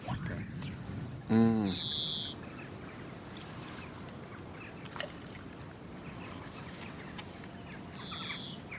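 A song thrush sings two short, clear high whistled phrases several seconds apart, fairly faint over a steady outdoor rumble, with a brief lower buzzy call just before the first phrase.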